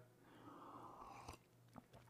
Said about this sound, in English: All right, let's go ahead and have a sip of coffee.